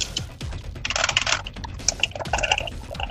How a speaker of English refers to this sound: That still sounded like a lot of dice. 3 sixes. Nice.